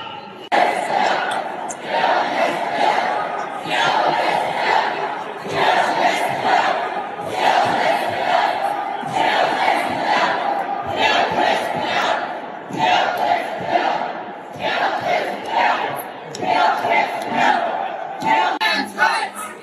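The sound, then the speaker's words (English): A large rally crowd, gathered on the day of hearings on a bill and growing through the day, chants in a steady, repeating rhythm, loud bursts of voices rising and falling roughly every couple of seconds, with cheering mixed into the roar. “You could see the crowd got bigger and bigger throughout the day.”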